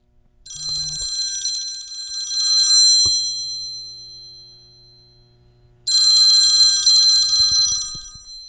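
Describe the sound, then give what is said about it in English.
A telephone rings in two bursts of rapid bell-like trilling, about two seconds each with a pause between, fairly loud, with no voices. “Is that the phone? Is that the phone? Yeah, it sounds like the phone.”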